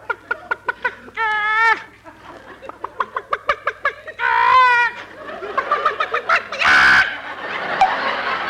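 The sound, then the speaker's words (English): Chickens being fed corn cluck in quick bursts of short, sharp notes, broken by a few longer, drawn-out squawks and a loud flurry near the end, fairly busy. “We got to feed the chickens.”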